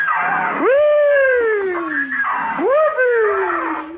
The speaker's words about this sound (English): My squeaky door. You know, I just love to swing on that door. It makes such a nice sound. Listen.